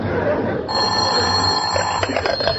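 A telephone bell starts ringing partway through, a steady, high, metallic trill that holds without pause over a noisy, hissy background.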